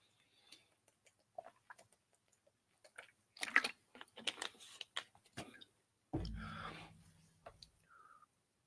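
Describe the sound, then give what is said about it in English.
Soft clicks, sips and wet gulping sounds of someone drinking water, followed by one louder, rough throat clearing and a few faint mouth noises afterward; nobody speaks. “I'm going to get a quick swallow of water and clear my throat.”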